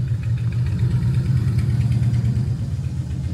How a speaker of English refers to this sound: As you guys can hear, I live right by the park lot in my apartment building, and one of my neighbors has a motorcycle. Rock on. I hope that gets picked up on the mic.